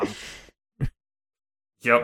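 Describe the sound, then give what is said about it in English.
A voice imitates a yawn: a breathy, drawn-out exhale, a brief pause, then a short vocal burst and another voiced, stretched sound. Moderately loud, with no other sounds. “And he's like, I still got to try. Yawn.”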